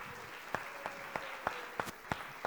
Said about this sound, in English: Would you give them another round of applause?